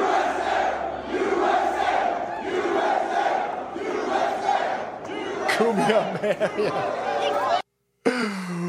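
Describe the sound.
A large crowd at a sneaker convention chants "USA" loudly in a steady, repeating rhythm, about four rounds, then the chant breaks into scattered shouting voices before a brief cut to silence.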